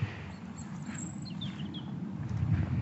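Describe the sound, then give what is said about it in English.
A robin sings a few thin, high warbling phrases below a cliff top, over a steady low rumble of wind or outdoor noise. No one speaks. “I've come off the top and down to where the robins sing.”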